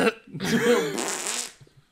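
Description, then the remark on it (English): A single long, loud fart, raspy and sputtering for over a second before trailing off into quiet. “You want to add something to that? A fart, maybe?”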